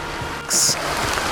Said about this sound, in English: Oh, here comes the rain.